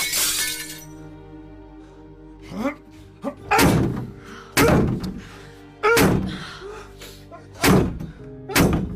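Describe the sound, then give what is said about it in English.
A fire axe strikes a metal door about six times in heavy, irregular blows to force it open, each impact loud with a clanging, ringing resonance that lingers between hits. “You think you can axe down a metal door?”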